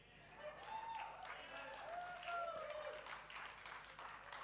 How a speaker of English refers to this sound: There's a few claps behind there.